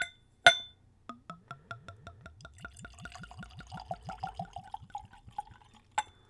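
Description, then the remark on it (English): Lucid absinthe poured neat from a bottle into a clean Glencairn glass, a quick run of rhythmic glugs rising in pitch as it fills, with a sharp clink of glass at the start and end. “So let's go for a pour.”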